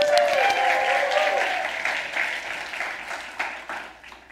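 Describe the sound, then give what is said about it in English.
Sustained audience applause at a certificate presentation, a dense wash of many hands clapping that starts loud and slowly thins out, with a few louder individual claps and some cheering voices early on. “Let's one more time. Round of applause.”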